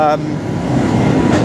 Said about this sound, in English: Bloody hell, that was loud, wasn't it? It's a tractor, definitely in the South Country.